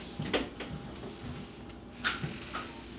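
A door being opened or closed, with two sharper clunks and a few lighter knocks and rattles over a quiet hum; no one speaks.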